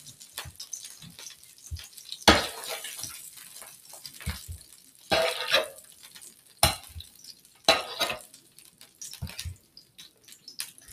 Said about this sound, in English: Okay, sorry about that, but basically what happened is I put in too much oil and got very loud and it was kind of smoky, so I was trying to open the window, but whatever.